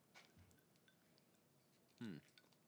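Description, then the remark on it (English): Chewing on a sticky chocolate candy bar like a Milky Way, near the mic: a few soft, wet mouth sounds spaced out over a quiet background, with one louder, brief burst of munching near the end. “Sorry, I'll chew away from the mic.”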